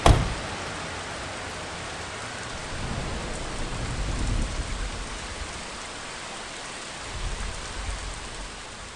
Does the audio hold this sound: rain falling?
yes